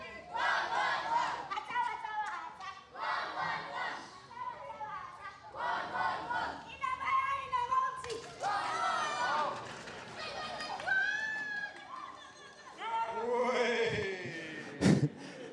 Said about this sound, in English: So you saw a little clip of this earlier. This is the Sierra Leonean version of Duck, Duck, Goose, I suppose.